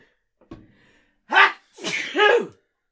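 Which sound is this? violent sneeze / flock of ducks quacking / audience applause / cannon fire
violent sneeze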